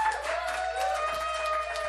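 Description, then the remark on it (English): An audience claps steadily and continuously for two seconds for the host of the evening, a dense crackle of many hands with a faint, sustained tonal whine running underneath. “And then clap for your... your host for the evening”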